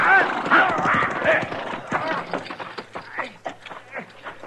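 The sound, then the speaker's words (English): A horse whinnies loudly in a shrill, wavering cry after a gunshot hits it, then a run of hoofbeats clatters in quick, uneven clip-clops that fade slightly toward the end. “He got my horse, but I'm pinned down.”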